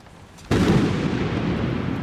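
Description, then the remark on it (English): A lightning bolt from a cloudless sky strikes a fire of silver flames with a sudden, loud burst after a moment of quiet, followed by a steady, heavy roar that rumbles on with no voices. “As the final words were spoken, a bolt of lightning shot from the cloudless sky, striking the fire, enraging the silver flames.”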